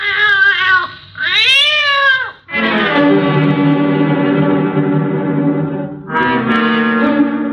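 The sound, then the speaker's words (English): A cat lets out a few short rising meows, then a long, drawn-out whine that wavers before a final cry, after lapping up liquor spilled on a carpet. The sound is loud, with no talking. “5 seconds later, he let out a whine, and his tongue stopped moving.”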